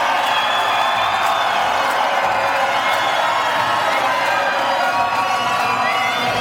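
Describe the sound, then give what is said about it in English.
A large crowd cheers and shouts loudly and continuously, a dense wall of voices with whoops rising above it, sustained without a break, as the first Connacht rugby player steps off the team bus on arrival at the ground. “Listen to the cheer for Pat Lamb.”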